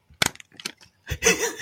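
A stapler punching through two pieces of paper: a sharp mechanical crack followed by a few lighter clicks and a crunching, papery rustle at the end. Fairly loud, no talking.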